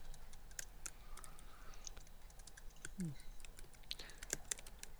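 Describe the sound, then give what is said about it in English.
Furious, rapid, irregular clacking of computer keyboard keys, a dense flurry of sharp clicks over a low background hum, with a brief low murmur partway through. “So, yeah, but there's furious typing going on.”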